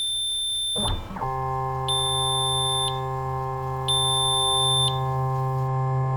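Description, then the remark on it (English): A steady electronic buzzing alarm drones continuously at the new entry gate of a deportation camp, sounding when a person is allowed inside after a body scan, with a higher beeping tone pulsing on and off about once a second in a regular pattern, loud, with no voices. “And it makes alarm when it allows you to go inside.”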